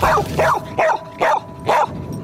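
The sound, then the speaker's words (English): A Border Collie named Venus barks five times in answer to the multiplication question "What is 3 times 2?", in a steady, evenly spaced rhythm, each bark a sharp, mid-pitched burst standing alone with no talking. “collie Venus even knows her multiplication tables. What is 3 times 2?”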